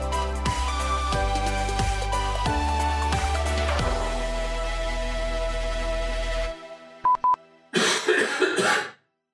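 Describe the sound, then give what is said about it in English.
Instrumental music plays and cuts off, followed by a couple of brief electronic beeps, then a loud, raspy cough bursts out in the near silence. “That was a very nice timed cough.”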